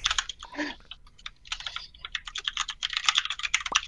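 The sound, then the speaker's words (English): Rapid, uneven clatter of keys on a computer keyboard, a dense run of crisp clicks with brief pauses and no voices. “Who's typing right now?”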